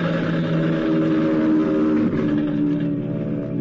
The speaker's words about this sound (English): And then suddenly a dive bomber was coming at us from out of the clouds.